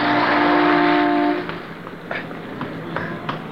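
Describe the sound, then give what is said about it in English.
A car roars by loud for about a second and a half with a strong engine drone, then fades, leaving quieter street noise with a few sharp clicks and knocks. “I thought sure you were going to get hit by that car.”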